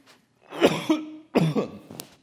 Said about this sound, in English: sorry for coughing right into the mic.